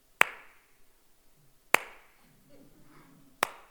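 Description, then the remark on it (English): A sarcastic slow clap: three single hand claps spaced slowly apart, about one and a half seconds between each, sharp with a short decay, from one person and otherwise quiet. “Like, it would have been a slow clap.”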